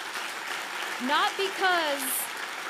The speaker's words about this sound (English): Can we just give these guys a round of applause?